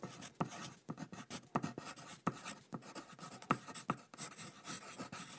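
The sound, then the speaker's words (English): Dry scratching of a pencil sketching across sketchbook paper, a steady run of short strokes and quick scribbles with brief pauses between, heard alone with no talking. “But this time, they'll leap from his pencil onto his sketchbook.”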